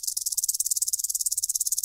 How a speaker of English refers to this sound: But these are harder to rattle because they're just actually the rattlers. And the first one was the tail attached to the rattler, and it's a much bigger snake.